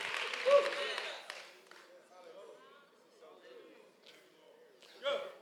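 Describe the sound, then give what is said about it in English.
An audience claps hands at a preacher's call in a brief, dense burst of applause that fades after about a second, followed by a man speaking and a short, softer flurry of noise near the end. “Can you clap your hands that there is grace for you, whether you were the offended or the offender?”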